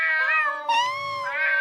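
A cat lets out a long, wavering meow that rises and falls in pitch, loud, continuing without a break for under two seconds with no one talking.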